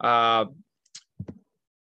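A drawn-out vocal sound fades, then a few short, sharp clicks follow, like a computer mouse being pressed while clicking on links on ESPN.com: one soft tick, then a quick close pair, at moderate volume.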